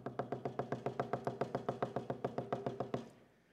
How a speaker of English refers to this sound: But when it's not operating well, when the ice is accumulating, what happens? There's a picture of my refrigerator right there. I've had to do that three times this year. And when that ice builds up, it hits the fan, and the fan sounds like...